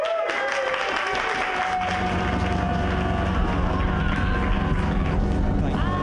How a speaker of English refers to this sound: So you guys have to be really special right now and clap even bigger than you've clapped before